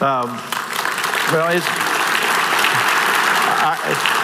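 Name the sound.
audience applause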